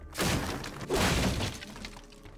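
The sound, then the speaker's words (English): A heavy coffin, dropped when a pallbearer slips, crashes down hard onto a road, with two loud impacts and a burst of splintering, breaking debris, then a brief rattling settle. No voices. “Suddenly, one of the pallbearers slipped and fell to the ground, and to the horror of everyone watching, the coffin fell with him, crashing hard onto the road.”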